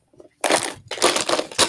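Loud, crisp crunching of Funyun chips eaten for ASMR, with the microphone right next to the eater, in three bursts, the first two long and crackly and a shorter one at the end, with no talking.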